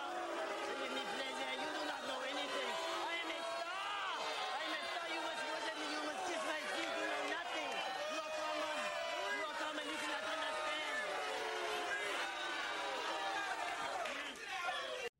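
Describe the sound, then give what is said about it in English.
A large crowd roars continuously for a performer, many voices screaming and cheering at once in a dense, loud wall of sound that holds steady for the whole stretch before cutting off abruptly. “Okay, that guy, at least he commanded a crowd. He got him screaming.”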